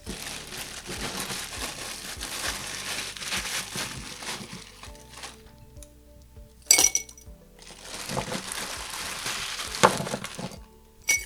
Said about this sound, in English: So we're just going to get started by pouring some ice into our tumbler here.